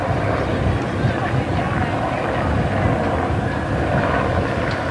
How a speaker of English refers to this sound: they're different helicopters. Have you noticed? They look different each time.